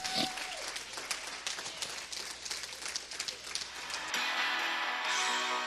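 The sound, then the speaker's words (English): A church audience at Forward Church claps their hands at the preacher's call during a sermon, a dense, steady burst of applause for about four seconds, then it cuts off abruptly into a bright, sustained musical tone. “Come on, clap your hands.”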